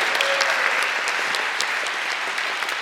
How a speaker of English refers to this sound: Hey, thank you all for hanging in there. Yeah, go ahead and applause. Yeah, good job.